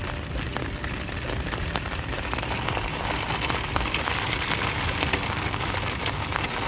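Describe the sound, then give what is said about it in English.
Steady rain patters on a hard surface, a dense continuous hiss with scattered sharper drips tapping throughout, fairly loud, with no voices. “Rain's nice, that's for sure.”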